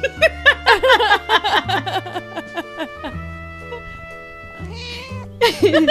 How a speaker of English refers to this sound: I had my cat meow right into the microphone. I'm curious how it's going to come out.